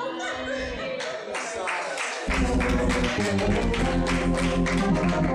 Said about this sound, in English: I didn't ask you to clap, but if you clapped, you should be bold enough to do it well.